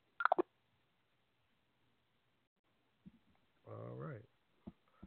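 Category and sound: signal or alarm, telephone keypad dialing tones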